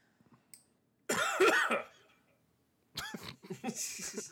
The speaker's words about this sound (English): It's a lingering cough that I've had for like over a week now.